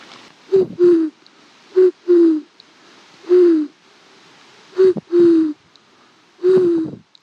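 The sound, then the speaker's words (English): A person imitates a dove's or pigeon's coo by pushing air through the tongue, with breathy, hooting calls repeated in short pairs about four times with brief pauses between. “Which can sound a bit like a dove or pigeon.”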